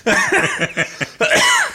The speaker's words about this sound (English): Is that the 100th day cough? Oh, please tell me you've got that cough.